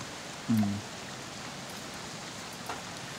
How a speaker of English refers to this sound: And just to make the moment worse, the rain just pours back down on top of you.